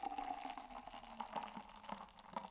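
Beer pours steadily into a glass, a continuous glugging stream with fizzy, bubbling crackles on top, rising slightly in pitch as the glass fills. No one speaks.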